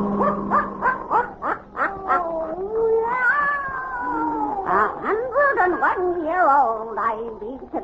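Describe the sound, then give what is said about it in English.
A black cat, Satan, yowls loud, first in a quick run of short, pulsing cries, then in long, wavering wails that bend up and down in pitch. “Weird, blood-chilling tales told by old Nancy, the Witch of Salem, and Satan, her wise black cat.”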